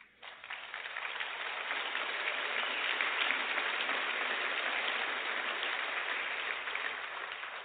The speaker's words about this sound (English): I don't usually get applause, so I'm going to quit while I'm ahead.